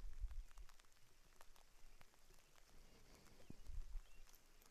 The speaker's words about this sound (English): you might be able to hear the rain.